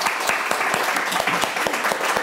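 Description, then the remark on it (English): A crowd applauds steadily, with sharp claps in a quick, irregular rhythm forming a dense, loud patter that holds at the same level throughout, and no voices break through. “So I'm going to just give them a applause.”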